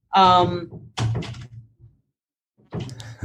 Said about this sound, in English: My son wants to get in and I lock the door. It's a great sound.